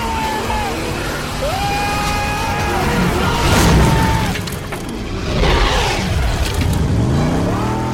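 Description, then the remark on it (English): A car engine revs and roars loudly, then a heavy crashing impact hits around the middle, followed by another thud and the motor straining on, as a car is jumped onto Carter's boat in a film scene. “Jump the car onto the boat.”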